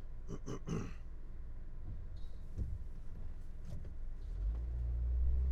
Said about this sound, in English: Unfortunately, though, I'm going to be a little bit late. It's a lot of traffic today. Strange. I wonder if there's some road construction up ahead that I didn't know about.